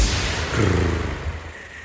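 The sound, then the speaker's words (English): A person imitates a cat's purr: a low, rough, rumbling drone that holds steady for about two seconds, swelling slightly in the middle before trailing off, with no talking over it. “Were you purring just now?”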